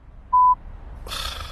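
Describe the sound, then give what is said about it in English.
At a pharmacy, a phone gives one short, loud electronic ring tone, a steady beep lasting about a quarter second, then a wash of hissy noise rises and continues to the end. “We were still at the pharmacy when my phone rang.”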